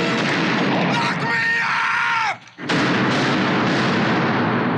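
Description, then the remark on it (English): Loud, chaotic gunfire as police shoot a man, with a raised voice crying out over it, a brief lull, then another dense stretch of shooting. “And they're like, bang, bang, bang, bang.”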